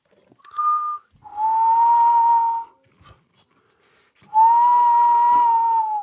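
Someone whistles steady, sustained tones: a short higher note, then two long, even notes of about the same pitch, separated by a pause. The whistling is clear, with no talking.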